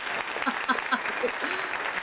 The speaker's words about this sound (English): Before we get started, I would like to, yes, the applause.